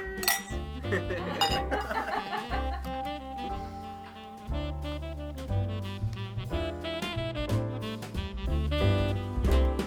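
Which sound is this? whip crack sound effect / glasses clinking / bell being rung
glasses clinking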